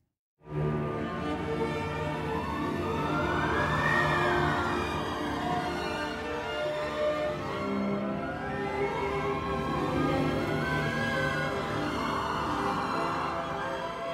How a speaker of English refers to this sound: It's all whimsical and with the wind machine in the orchestra as well, and the percussion, they're rolling this kind of this paper on a drum that gets rolled and it sounds like wind.